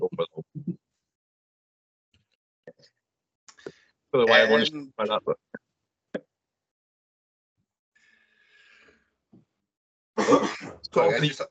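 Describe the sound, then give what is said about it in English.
A person coughs and clears their throat in two loud bursts of harsh hacking separated by a quiet pause, with a few faint clicks and breaths in between. “Having a coughing fit there as I was about to go and talk.”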